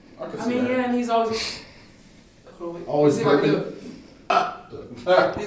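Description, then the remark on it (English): A voice imitates the cartoon character Rick's constant burping with drawn-out, gurgling vocal bursts, followed by more burp-laden voicing and sharp noisy blasts. It is loud throughout. “And he's always... always burping?”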